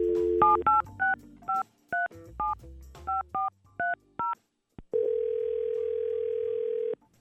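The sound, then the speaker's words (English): A quick run of about a dozen touch-tone keypad beeps as a phone number is dialed, followed after a short pause by one long, steady telephone ring tone, clear with no talking. “So let's see if we can get her on the phone.”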